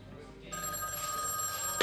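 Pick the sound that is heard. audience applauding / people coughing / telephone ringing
telephone ringing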